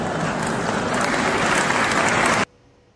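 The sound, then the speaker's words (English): Loud, dense applause from a 1970s crowd clapping at what a speaker just said, a steady wash of many hands clapping at once, which stops abruptly after about two and a half seconds, leaving near silence. “These are the people clapping and applauding and laughing at what he just said.”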